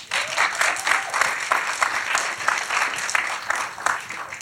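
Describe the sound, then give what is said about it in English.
A crowd claps steadily and fairly loudly, a dense patter of many hands sustained throughout with no voices rising above it. “I feel that deserves a round of applause.”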